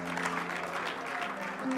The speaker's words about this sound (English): Come on, clap your hands. Hallelujah.